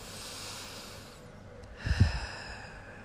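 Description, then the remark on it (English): Breathy sniffing through the nose as a person sniffs a dog, drawing in air with a soft hiss and ending in a sharper, stronger snuffle near the end, with no talking. “I can't really smell anything, so I'm going to sniff my doggie, because I know she'll stink.”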